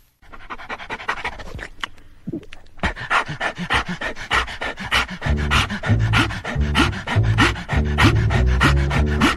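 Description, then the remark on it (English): A great big wolfhound pants heavily and rapidly while standing and slobbering, a steady rhythm of rough, breathy huffs that grows louder and deeper after a brief pause, with faint wet mouth sounds between breaths. “Great big wolf hound standing staring at me, licking his chops and weighing me up for tea.”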